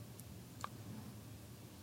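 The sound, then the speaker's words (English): A couple of soft, sharp clicks, like a computer mouse being pressed while a website loads, sound against a quiet low hum, with the clearer click landing near the middle. “It's loading. I'm clicking.”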